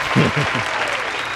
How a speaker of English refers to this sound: Man, can she get a round of applause?